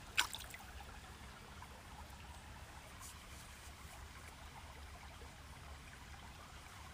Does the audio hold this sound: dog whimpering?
no